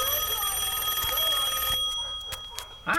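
A telephone rings with a bright, buzzy electronic tone for under two seconds as a call comes in during a TV show, then stops, followed by a few soft clicks and a short rustle.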